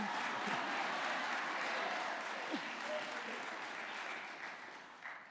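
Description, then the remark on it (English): An audience at a church breaks into steady, dense applause, with many hands clapping in a continuous roar that holds for several seconds and eases slightly toward the end. “Well, you can clap for him.”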